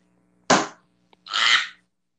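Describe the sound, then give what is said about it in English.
A single sharp, loud slap of a hand on a table, struck after a foot was stubbed against it, ringing briefly before fading, then a faint tick and a longer breathy, hissing burst of noise. “I stubbed my foot against the fucking table. So I slapped the table, and then I hurt my arm.”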